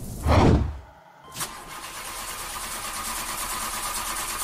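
A truck engine cranks with a loud, brief sputtering whir but fails to start because the truck is out of gasoline. It goes quiet, then a sharp clunk is followed by a steady, low mechanical drone. No one speaks.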